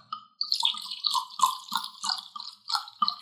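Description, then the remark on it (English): Wine from a freshly uncorked bottle glugs and splashes as it pours into a glass, a steady bubbling trickle with a ringing, rising pitch as the glass fills, lasting a few seconds with no talking. “I get excited seeing my glass get full.”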